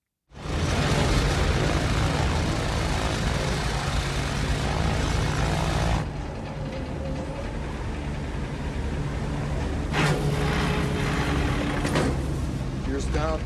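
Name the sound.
propeller airplane in flight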